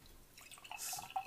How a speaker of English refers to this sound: This is a very fancy beer. Mm, let's pour it up.